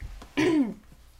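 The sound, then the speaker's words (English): A single short throat clearing by a speaker during a health and safety presentation, a gruff rasping burst lasting about a third of a second, with quiet room tone before and after. “I have to clear my throat here.”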